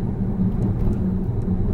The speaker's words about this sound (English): So we're now going to turn on the autopilot system. Okay. Engaging it now. My hands are now off the steering wheel. My foot is off the accelerator. The car will observe the 30-mile-an-hour sign and increase its speed as we go through this bend.